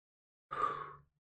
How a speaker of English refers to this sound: Breathe. Heavy breathe, more fucking like.